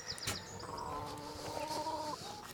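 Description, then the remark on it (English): Chickens clucking in a coop while eggs are collected, several birds making short murmuring calls and a sustained tonal croon over a steady background, moderately loud, with no talking. “Head in the chicken coop.”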